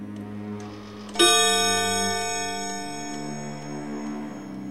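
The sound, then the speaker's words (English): A clock chiming the quarter hours strikes once, bright and resonant, its tone hanging and slowly fading while a soft, steady ticking continues underneath. No one speaks. “He lay in this state until the chime had rung three quarters”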